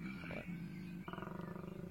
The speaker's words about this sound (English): It's a scary koala noise. Yeah, I don't know if this. It sounds like there's a lion in the It sounds like a lion. Sounds like a predator.